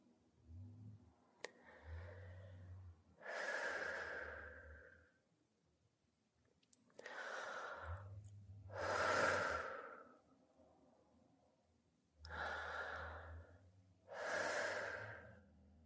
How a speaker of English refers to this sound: So first take 3 deep breaths to let out any tension from your day.